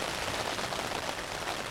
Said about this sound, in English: It rained for a little while, but not nearly this hard while we were out hiking.